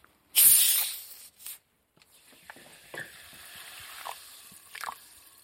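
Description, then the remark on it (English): Oil heats and sizzles in a pot over a lit gas flame, opening with a loud, bright hiss that fades after about a second, then settling into a softer, steady crackle with scattered pops. “Okay, right, the oil is heating up.”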